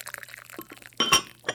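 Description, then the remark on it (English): Clinks of china cups against each other, followed by a short trickle of tea being poured, then a final light clink; quiet with no talking. “Let's pour the tea and open the bicky so we're ready.”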